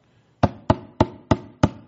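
Five firm, evenly spaced, loud knocks on a door, each a sharp thud with a brief ringing tail, with no voices.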